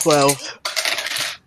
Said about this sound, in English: Go ahead and give me your next con roll. Those dice failed last time.